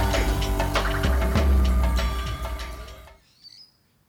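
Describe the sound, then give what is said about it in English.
Birds chirp in quick, scattered bursts against a dense, steady background that cuts off abruptly near the end, leaving one faint high call trailing in the quiet. “As the birds chirp, our minds turn over again and again, trying to figure out how we can awaken the people.”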